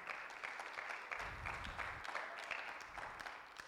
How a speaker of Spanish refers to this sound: Dele palmas al Señor si se las va a dar.